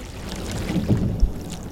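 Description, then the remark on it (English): Soft, low bubbling and gurgling water coming off the stern of a boat, steady with a few louder swells and a brief thump near the end; no voices. “You're hearing those little bubbles coming off the stern of the boat.”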